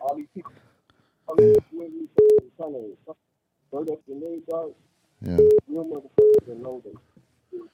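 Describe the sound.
A call-in phone line rings with an incoming call in short electronic tones in two pairs, fairly loud and clear, while a man keeps talking over them in between.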